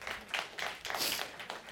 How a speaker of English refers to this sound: I love that you applauded. That is something to applaud about. It really is.